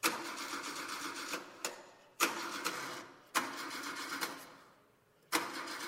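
An engine cranks over as a key is turned, in several separate attempts, each starting with a sharp whir that fades off, with brief pauses between tries and no steady running, as the engine fails to start.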